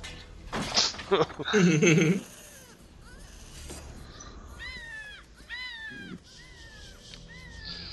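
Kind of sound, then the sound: bird, bird calling loudly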